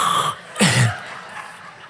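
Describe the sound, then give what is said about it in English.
A single harsh cough bursts out, short and throaty, fading into quiet with no talking around it. “But now here I am coughing, and I really wish I had that air.”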